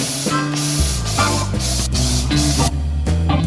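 A Mavis insecticide aerosol spray hisses in a series of short, loud bursts as it is sprayed at a cockroach inside a room, with a steady low droning tone running underneath throughout.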